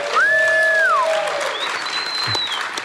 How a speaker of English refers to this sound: Everybody clap it up